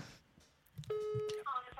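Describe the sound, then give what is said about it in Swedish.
A single steady electronic telephone ringing tone of an outgoing call, made to tell a woman she has won a prize, sounds for about half a second, clear and fairly loud, with low background murmur and noise around it. “Och nu ska du ringa från företaget på Österlen och säga att hon har vunnit.”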